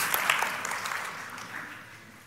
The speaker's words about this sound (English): Well, you can clap for Rudyard Kipling, but not mine.